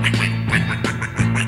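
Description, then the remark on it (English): A duck quacks several times in quick, uneven succession, nasal and fairly loud, over a steady low humming tone that runs underneath throughout. “We played some tag and hide and seek, and he would quack and I would speak.”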